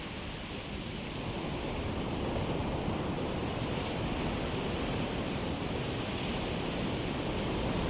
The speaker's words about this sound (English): As we walk along the edge of the beach and the sea, where the water gently laps up at our feet